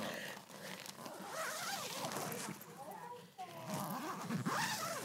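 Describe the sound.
A zipper on a portable sauna is pulled closed in several raspy, uneven strokes, fairly loud, with a low voice murmuring underneath part of the way through.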